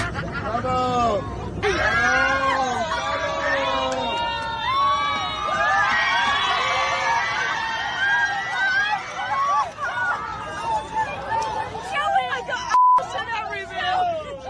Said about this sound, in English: A flight attendant caught this couple joining the Mile High Club in the bathroom, and everyone on the plane knew what was happening. Listen to everyone cheer the flight attendant on as he opens the bathroom door.